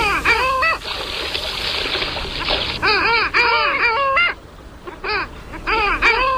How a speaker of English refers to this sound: Not sure what the question is, though. It's today's Talkin' Birds featured feathered friend, Clangula hyemalis, the long-tailed duck.